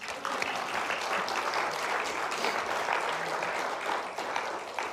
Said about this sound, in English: which is awesome, so I think we should clap.